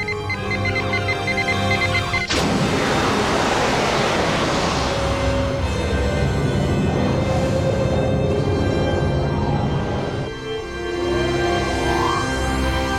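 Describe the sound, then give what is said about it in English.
A sudden, loud roaring rush of air from the main shuttle bay being decompressed bursts in over a steady electronic hum, blasting for about eight seconds before cutting off abruptly, leaving the hum and a faint rising tone. “I am decompressing the main shuttle bay.”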